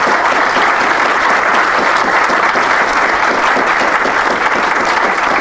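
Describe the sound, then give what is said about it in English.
Sustained applause from a sizable crowd at a live show, recognizing the Patreon backers who stand up; dense steady clapping that stays loud and even throughout without pause, no voices standing out above it. “Get a round of applause for our Patreon backers.”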